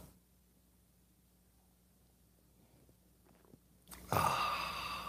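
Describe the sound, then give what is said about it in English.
Near silence for several seconds, then a sudden loud slurping sip of coffee from a mug that continues to the end, with no talking. “It's called the simultaneous sip. It happens now. Go.”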